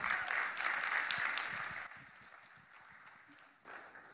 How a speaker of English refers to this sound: Great man. Would you give Bill Ankerberg a hand of applause?